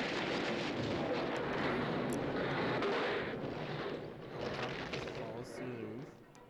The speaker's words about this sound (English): Someone's breaking through the theater roof. What is it? Helicopter.